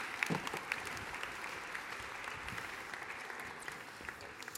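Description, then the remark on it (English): A crowd applauds everyone who helped act out the first Christmas, a dense, continuous wash of applause that holds at an even level for several seconds, with no voices standing out. “Can we give everyone a big round of applause for helping?”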